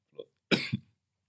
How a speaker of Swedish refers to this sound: Nej, hostig bara. Oj. Corona. Vrångstrupen, tror jag.